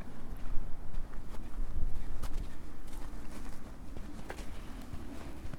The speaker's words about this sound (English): Skylarks are singing in the fields behind the cliffs.